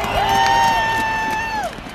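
A stadium crowd at a Northwestern University football game cheers in a steady, dense roar as a parachutist brings a flag onto the field, while one loud sustained whoop rises, holds its pitch for about a second and a half, then falls away.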